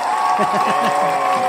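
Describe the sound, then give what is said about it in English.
A crowd claps steadily, the dense patter filling every moment, while voices whoop and cheer over it in short rising bursts. “Do you want cheering or clapping?”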